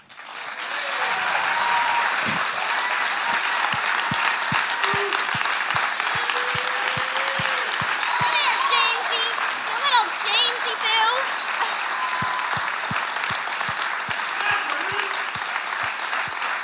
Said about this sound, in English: I'd like you to give a big round of applause for my friend James.